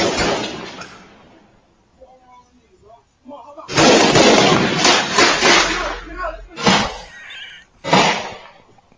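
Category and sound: sound effect, gunfire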